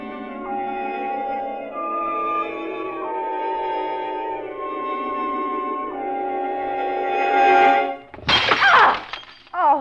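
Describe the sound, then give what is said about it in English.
A vase knocked off a mantel crashes and shatters in a sudden burst of breaking glass after several seconds of sustained, swelling orchestral music. The smash is loud, brief and bright, with scattered fragments trailing off. “It was a vase. I knocked it off the mantel.”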